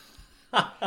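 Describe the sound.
After a near-silent moment, a person voices a short, loud, raspy growl imitating a lion's mating call, and a second growl begins just as it cuts off.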